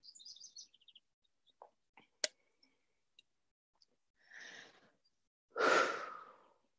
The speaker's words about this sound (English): So let's all take a few deep breaths together.